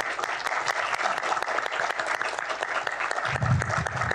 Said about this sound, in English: To our guests, let's give them a round of applause.